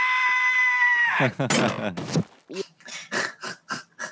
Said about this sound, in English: Oh, all the screaming. So good. He's so good. That a high-pitched … scream is some of my favorites.